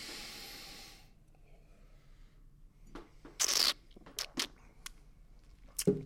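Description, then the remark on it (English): Short bursts of breathy noise as people taste the inaugural Chateau Kermode wine: a long sniff followed by several quick sniffs and a slurping sip, separated by quiet pauses, with no talking. “have a sniff and a taste and see what you think of the inaugural Chateau Kermode.”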